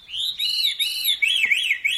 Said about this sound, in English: Today's featured feathered friend, Catharis fusescens, the veery.